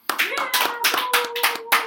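Sparse applause from a small handful of people, the claps loose and uneven across about two seconds, with a faint voice or whoop threading underneath.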